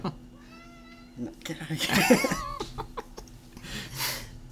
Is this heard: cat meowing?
yes